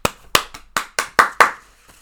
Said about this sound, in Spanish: México también empató 0-0 con Polonia, pero Memo Ochoa, el guardameta mexicano, goalkeeper, atajó un penal. Todos lo aplaudimos mucho.